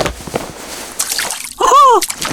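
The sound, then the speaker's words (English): Water sloshes and splashes in a few uneven bursts as feet are lowered into a bucket of cold water, followed by a short rising-and-falling vocal exclamation. “Place your feet in the bucket of water.”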